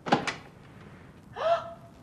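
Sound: door opening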